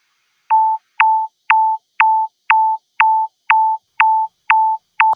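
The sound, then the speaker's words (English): A steady run of about ten identical synthesized sine-tone pings, rendered with Elementary using a pitch envelope and a volume envelope, evenly spaced roughly twice per second, each opening with a quick downward chirp before settling on a mid-pitched tone. No talking. “So running this example, we're going to expect to hear like a pinging sine tone, but each time it pings, it's going to have this kind of like chirp at the beginning.”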